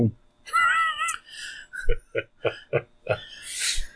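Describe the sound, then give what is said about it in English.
A person imitates a cat with one drawn-out, wavering meow, followed by a quick run of short, choppy vocal sounds and a breathy hiss at the end. “I was the cat.”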